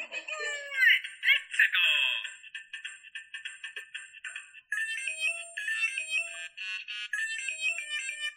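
A Lego Mario electronic toy figure, placed on a Donkey Kong basket, plays a bright, tinny tune of quick chiming notes, starting with a busy burst and continuing as a steady, high-pitched melody; no one speaks.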